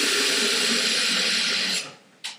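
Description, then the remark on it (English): A kettle boiling and steaming, with a loud, steady hiss over a low bubbling rumble that dies away near the end, followed by a brief puff of steam. “The sound's on the kettle.”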